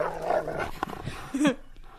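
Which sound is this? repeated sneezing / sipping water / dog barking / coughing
dog barking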